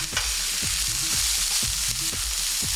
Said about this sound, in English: And I'm going to saute my vegetables first. Cover the frying pan with the oil. Add the vegetables. let them saute for several minutes so that they'll all blend in the flavors.